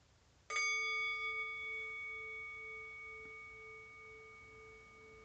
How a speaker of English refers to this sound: And so we'll do this for 20 minutes. We'll start in with the bell.